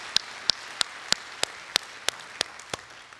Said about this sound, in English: If you're gonna clap, clap for Jesus, clap for him.